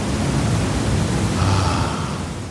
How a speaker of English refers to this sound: hot tub sounds to calm anxiety or trigger sleep, white noise jacuzzi.